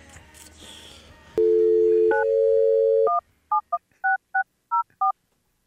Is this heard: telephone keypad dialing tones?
yes